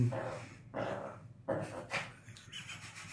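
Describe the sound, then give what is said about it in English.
A dog whines and gives muffled, breathy barks, three rough bursts in a row followed by a thin, high whimper, fairly faint, with no talking over it. “The dog's trying.”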